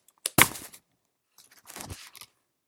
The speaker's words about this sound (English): And I have to turn my page.